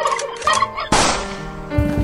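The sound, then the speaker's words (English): A turkey gobbles loudly, a couple of rapid, warbling bursts followed by a longer rattling gobble, with no voices around it. “Next to the goose, an unsuspecting turkey sees his best friend, Gil the Goose, racked by guilt about Jeffrey Toobin, has taken his life.”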